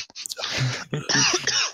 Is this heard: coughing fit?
yes